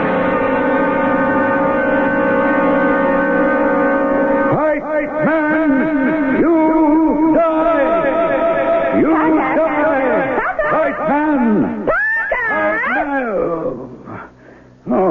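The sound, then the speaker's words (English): A loud, reverb-drenched effect from a tape deck being set up: a steady layered drone for a few seconds, then warbling tones that swoop up and down in pitch, smearing into one another before cutting off abruptly. “That was the reverb you were hearing.”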